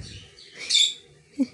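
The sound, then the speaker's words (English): A pet bird chirps: a short, bright burst of high tweeting that swells and fades, followed by a brief soft sound, with no one talking. “You see my bird cheering also?”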